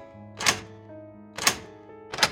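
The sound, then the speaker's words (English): Three sharp metallic clicks from the tumblers inside a door lock being lifted with lock-picking tools, spaced unevenly about a second apart over a faint steady hum, with no voices. “So then he starts lifting these tumblers. You can hear they start to.”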